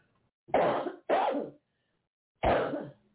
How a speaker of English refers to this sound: You guys, excuse me, I got a cough.